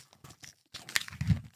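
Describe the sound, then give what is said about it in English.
A sticker packet being torn open: a few short crinkly rips, a brief pause, then a longer, louder scratchy tear with crackling paper noise, heard on its own without talking. “Right, let's open some more stickers then.”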